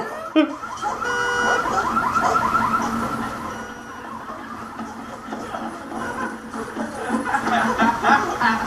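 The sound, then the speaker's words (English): A car alarm blares loudly and continuously, cycling through repeating electronic tones and warbles, with faint background voices underneath. “I told you that alarm was going to go off.”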